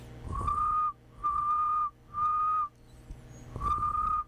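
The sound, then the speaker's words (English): A person whistles four steady, high tones, each lasting about half a second with short gaps between, trying to imitate a cricket's chirping. The whistles are clear and fairly loud, with no talking. “I want to show you guys, I learned how to make cricket sounds.”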